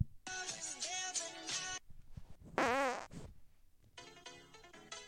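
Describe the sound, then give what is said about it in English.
Three loud bursts in a row, a buzzy sustained blast, then a wobbling, flapping fart sound, then another blaring burst, played as a comic rim-shot sting with no voices. “It's a triple rim shot with an organic fart in there.”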